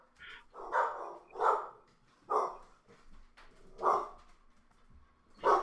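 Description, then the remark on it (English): A dog that has just been woken barks repeatedly, about six sharp barks in an uneven rhythm, moderately loud, with brief pauses between them and no talking. “Even your dog's upset about my pick for the score.”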